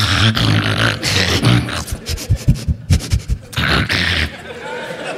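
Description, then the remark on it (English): Fairly loud, a person imitates their dog Blossom with rough, breathy vocal bursts and a quick run of short, rhythmic yapping or panting pulses in the middle. “about the same time, I got my dog Blossom, who was a quick impersonation.”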